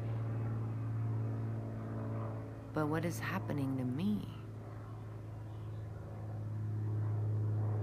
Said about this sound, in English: And things continue to happen, like that plane flying above my head right now.